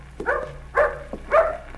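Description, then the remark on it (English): A dog barks three times in quick, evenly spaced bursts, moderately loud, with no one talking over it. “Your dog's running away.”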